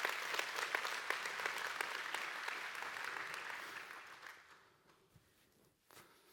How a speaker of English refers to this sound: In the fall of 2023, we saw 74 people get into the waters of baptism and proclaim Jesus as their king. And like, I need at least four of you to clap for that, because that's insane.